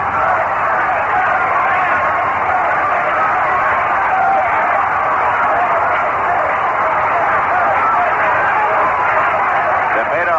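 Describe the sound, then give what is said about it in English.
A baseball crowd at Chase Stadium roars steadily for ten seconds as the Mets bat against the Braves in the bottom of the ninth inning. It is a dense, loud wash of many overlapping voices with no single shout standing out, thin and tinny like an old broadcast recording. “This crowd has come alive here at Chase Stadium with the Mets batting in the bottom half of the ninth inning.”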